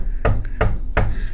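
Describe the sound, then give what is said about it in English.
A voice mimics a knocking noise: three sharp, evenly spaced thuds in a steady rhythm, fairly loud and punchy, with no words spoken. “Then there was this fucking knocking sound that went like this.”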